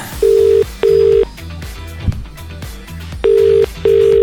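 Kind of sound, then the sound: signal or alarm, phone call ringing tone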